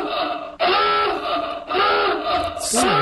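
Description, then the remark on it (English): A loud, harsh alarm sound effect, used as a spoiler warning, blares in long sustained pulses, about three in a row with brief breaks, the last one bending in pitch. No talking over it. “It's a spoiler warning, because we don't want to spoil it. It's a spoiler alarm.”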